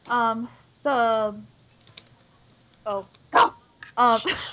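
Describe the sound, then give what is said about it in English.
A dog, startled by dropped feed, barks sharply several times in loud bursts, a pair of long yelping barks followed after a pause by a quicker cluster of shorter, rougher ones. “No, I like drop some feed and I startled the dog.”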